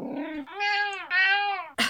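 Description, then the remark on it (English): A grumpy cat named Kipper yowls loudly in two long, drawn-out complaining cries, preceded by a low grumble and ending in a brief burst of noise. “He is the grumpiest cat in the world.”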